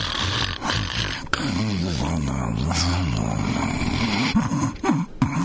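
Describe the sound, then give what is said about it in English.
A loud, exaggerated snoring sound effect rumbles continuously for several seconds, with a throaty, wavering pitch and a brief sharp snort near the middle, with no talking. “Unless you can think of something better than that, I thought the snoring one sounded just fine.”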